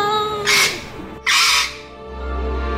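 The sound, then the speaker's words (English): Two loud, harsh shrieks in quick succession from a dizzy-colored parrot with red-rimmed eyes, each a short piercing squawk, standing out shrill over a faint low hum. “only to find a dizzy-colored parrot with red-rimmed eyes and a shrilling shriek.”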